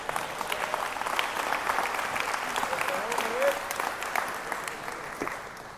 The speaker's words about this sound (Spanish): así que denle un aplauso a Manuel